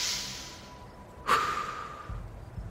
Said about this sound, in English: started to breathe loudly enough for me to hear.